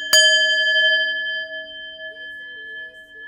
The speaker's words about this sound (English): Let me ring my bell.